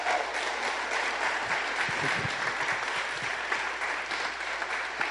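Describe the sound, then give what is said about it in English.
A crowd gives a round of applause, clapping steadily for several seconds, a dense, even patter of many hands with no pauses and no voices over it. “Actually, let's give them a round of applause.”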